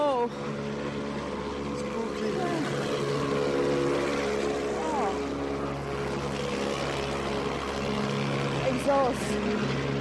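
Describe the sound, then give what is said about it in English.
A steady, loud drone of engines from taxis and buses passing on a warm, dark, starry night, with a continuous low rumble and occasional rising whines as vehicles move through the traffic. “More taxis and buses.”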